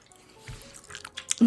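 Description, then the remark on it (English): Someone chews a piece of dark chocolate into the microphone, producing a quick string of wet, squishy mouth clicks and smacks that grow louder over about a second before a voice briefly cuts in at the end. “Oh, should I chew in the mic?”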